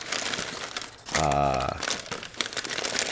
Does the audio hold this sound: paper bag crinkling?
yes